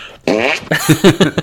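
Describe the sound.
A loud Doug Heffernan hand fart noise: one long buzzy blast, then a quick series of shorter sputtering bursts, with no talking.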